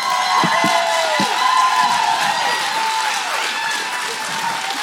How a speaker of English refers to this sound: But let's keep that same round of applause for somebody special. Let's stand to our feet and give a thunderous welcome to our lead pastors,